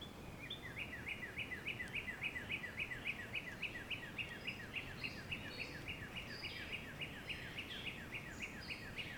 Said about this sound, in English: No, it's just a bird.